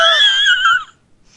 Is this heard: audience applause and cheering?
no